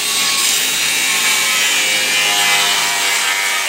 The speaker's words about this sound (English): He keeps a grinder in his truck for cutting metal.